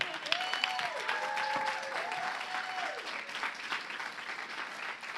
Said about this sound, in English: Come on, you got to clap a little louder if God's been good.